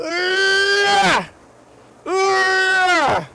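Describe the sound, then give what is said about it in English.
Two drawn-out vomiting noises, strained, throaty retching cries that each last about a second and slide down in pitch at the end, separated by a brief pause, loud and with no talking. “Those vomiting noises.”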